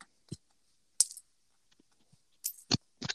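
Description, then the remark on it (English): Small metal charms used for charm casting during a reading clink together in a handful of sharp, bright taps, scattered irregularly with short quiet gaps between them, some landing as quick double clicks; no one speaks. “I hope my clinking sounds aren't too loud.”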